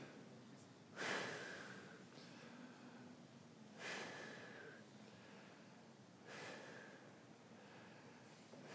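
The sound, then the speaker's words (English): Three slow, deep breaths drawn in at a steady pace at the end of a relaxation exercise, each a soft airy rush a couple of seconds apart, otherwise quiet, with no talking. “And I typically end doing that by just taking a few deep breaths, just breathing in.”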